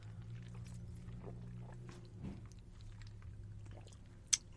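Drinking glasses clink together once as two people toast with their drinks before trying them, a single sharp bright tap near the end, preceded by a low steady hum and faint soft rustling and clicking noises.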